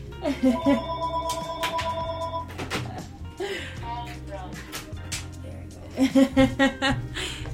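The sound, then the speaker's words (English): An old-fashioned landline telephone at a home rings twice in bursts of rapid bell trills, clearly audible while people keep talking over it. “She still got a phone at the crib that rings, y'all.”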